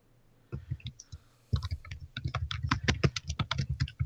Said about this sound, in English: Is someone typing? It's not me. Sorry.